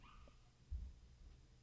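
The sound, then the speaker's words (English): A dog barks faintly somewhere in the distance, muffled as if through walls or from another floor, with a soft whimpering tone in a quiet room. “Why is my dog barking?”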